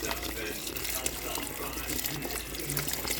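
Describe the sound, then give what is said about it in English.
Water pours steadily from a water bottle into a cooking pot of beans and ham hock, about a cup of water per half bottle, a continuous splashing and trickling stream lasting a few seconds with no talking over it. “Half of one of these water bottles is about a cup of water.”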